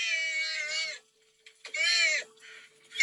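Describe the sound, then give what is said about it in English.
A sea otter gives two long, high-pitched wailing screams with a harsh, strained tone, each about a second long with a pause between, followed by a shorter, softer cry; no talking. “So I didn't pull up any sea otter sounds. Should we play some?”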